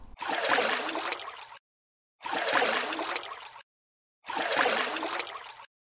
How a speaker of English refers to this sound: It's a fish jumping out of the water. Could you hear that one? That was really tricky, wasn't it?